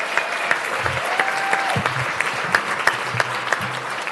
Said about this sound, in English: Again, let's give Kathy Fikes another big round of applause. Thank you.